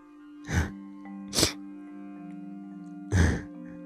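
Three short, breathy sniffs, two in quick succession and a third after a pause, each a sharp hissing burst over a steady low hum with no talking.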